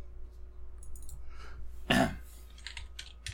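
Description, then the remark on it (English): Computer keyboard typing: scattered, uneven bursts of light key clicks, interrupted midway by a brief, louder throat-clearing sound, then the tapping resumes. “You can hear me typing.”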